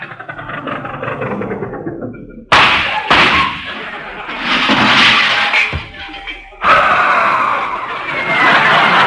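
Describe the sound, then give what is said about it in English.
An old truck engine runs loud, a steady rumbling chug that breaks into harsh, rattling roars with abrupt surges and clunks as it revs. “I said the old truck's running pretty smooth.”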